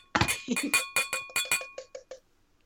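Glasses clink together in a toast among three team members, a quick flurry of about ten bright, ringing taps that grow softer over two seconds, with a faint high tone lingering under them. No one speaks.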